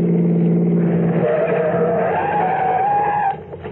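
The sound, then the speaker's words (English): A car skids to a stop with a long, loud tire squeal over the rumbling engine, the screech rising in pitch before cutting off abruptly near the end. “Stop the car, quick.”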